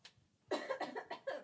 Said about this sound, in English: Wait, I gotta cough.